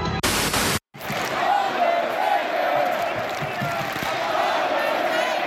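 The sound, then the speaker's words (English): A large arena crowd in Atlanta roars steadily, a dense wash of cheers and jeers mixed together in a mixed reaction to faces and heels, following a brief burst of harsh static and a short moment of silence. “Obviously, it's a mixed reaction here in Atlanta for faces and heels. We don't know who we're cheering.”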